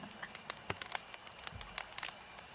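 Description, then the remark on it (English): Irregular pops and snaps of a crackling campfire from a 10-hour campfire loop, a steady scatter of small sharp crackles with a few louder ones, fairly quiet and with no one talking. “I put so much thought okay, into finding I'm this 10-hour campfire loop.”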